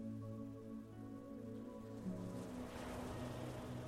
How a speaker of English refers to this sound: the salty ocean air, the muscles in your body are relaxing more and more as your mind focuses on the sound of the ocean surf.